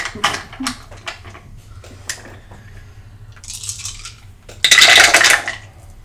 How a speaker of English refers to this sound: Okay, pick up your dice and roll them.